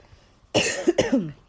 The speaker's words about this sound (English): I'm not sick anymore, really. But I do have a lingering cough. So when I talk for too long, I tend to start coughing uncontrollably.